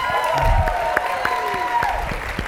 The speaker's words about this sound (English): A nice round of applause for both of them? And how about a big round of applause for all of our debaters today?